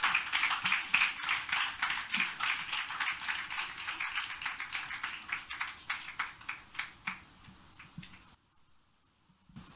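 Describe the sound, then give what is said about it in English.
An audience claps for a woman as she comes forward to speak, a steady, dense patter of sharp, overlapping hand claps that gradually thins and softens, fading out near the end. “Let's clap for her as she comes.”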